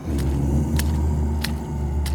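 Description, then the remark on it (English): Slow, soft squelching footsteps of a bog zombie animatronic in muck land about four times at an even pace over a heavy, continuous low rumble, with a faint droning groan underneath. “It sounds like creepy, mushy footsteps and moans.”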